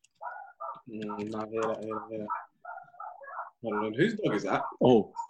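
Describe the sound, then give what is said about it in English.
A dog barks and yelps in a series of irregular, fairly loud bursts, some drawn out into whining tones, with short pauses between them and no one speaking. “Whose dog is that?”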